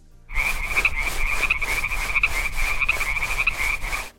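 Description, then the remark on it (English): A frog croaks in a steady, rapid series of loud, raspy pulses, continuing for a few seconds with no voices present. “Your very own collection of bullywug tadpoles. They'll grow up to be wonderful bathroom cleaning humanoid frog servants.”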